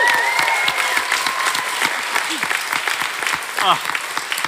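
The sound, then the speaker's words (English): An audience at the Brisbane Science Festival claps steadily throughout, a dense patter of many hands at a loud, even level, with brief whistles and cheers rising above the applause. “Please give it up”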